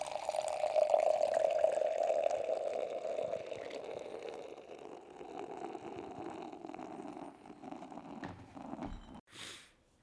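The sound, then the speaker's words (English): A bourbon scotch ale pours steadily from a can into a glass, a gurgling liquid stream that shifts in pitch as the glass fills, then tapers off with a brief final splash near the end. No one speaks. “This is all poured out. It's looking fucking beautiful, like a fucking stout.”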